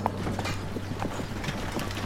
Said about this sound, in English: In late November 1830, Sidney Rigdon and Edward Partridge left Kirtland, Ohio, in a horse-drawn conveyance, likely a wagon.